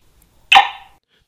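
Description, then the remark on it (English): A single sharp bark from Abby, a cattle dog, in central Missouri, USA, loud and abrupt, with a brief ringing tail that fades within half a second. No other sounds or voices around it. “Abby, my cattle dog and constantly in motion co-host. Say hi, Abby.”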